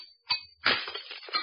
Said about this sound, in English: The glass you just heard broken was not ordinary glass. It was a closed vessel of exact contour of the man's head which it held. It was raised exactly 1 millimeter above the skin all around and above the hair.